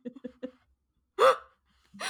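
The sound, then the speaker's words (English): A few short, catching breaths lead into a loud sneeze with a sharp burst, followed by a pause and the start of another sneeze-like burst. “Bless you, honey.”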